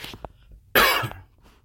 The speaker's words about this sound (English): I'm my bad. I'm not sick. Nigga just got a cough.